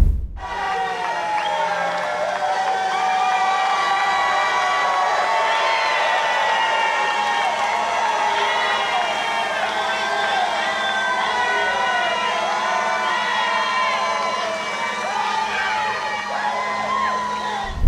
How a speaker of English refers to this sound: It's a very slow process, but you can hear the cheers getting louder in the background, and you can see the guy in the tree lift or whatever